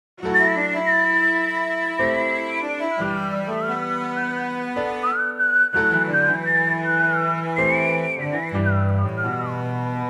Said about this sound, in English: So let's do the same thing with the piano, the cello counter melody, and I'll just whistle his melody on top of it so you can hear them all together.